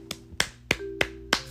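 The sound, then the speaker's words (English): Five sharp hand claps in a steady, even rhythm, each a crisp slap with a short ring, over a faint low steady hum. “Round of applause for you, because you did it.”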